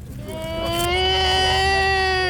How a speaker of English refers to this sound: Those haunting wails were very difficult to hear.